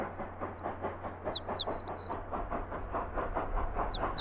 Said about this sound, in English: He uses the same bird sound like 7 times.